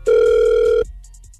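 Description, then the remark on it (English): A steady electronic phone tone hums loudly for under a second, then cuts off, followed by a faint run of short, evenly spaced high beeps, as on an outgoing call connecting. “We're going to call her right now.”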